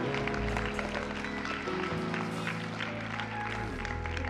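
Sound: audience clapping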